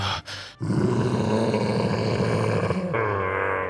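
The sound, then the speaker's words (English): A giant toad, its skull shattered by a hilt driven through it deep into the ground, lets out a deep, bellowing death roar, loud. It swells after a couple of brief sputters and holds for about three seconds, shifting tone near the end. “And this toad lets out this bellowing death roar.”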